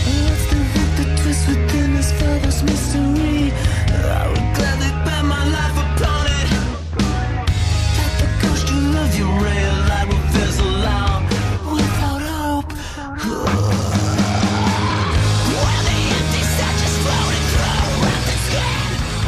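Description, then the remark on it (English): Loud, dense hardcore band playing a breakdown with heavy distorted guitars and pounding drums, with harsh screamed vocals riding on top; the wall of sound briefly thins for a moment before crashing back in. “Kind of like his screaming voice there, as much as I was just kind of railing against it.”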